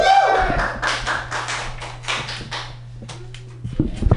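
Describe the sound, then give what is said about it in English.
A comedy show audience breaks into loud, steady applause for the next comedian, carrying on for several seconds before thinning out, with a low hum underneath and a voice cutting in at the very end. “Everybody, start applauding right now”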